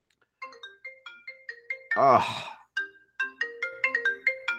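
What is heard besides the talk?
phone ringtone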